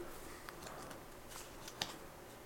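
Papers rustle and shuffle as someone rummages through a pile of hundreds of papers to draw the winner of a poll, with a steady crinkling texture and a few sharper snaps of paper, fairly quiet, with no voices.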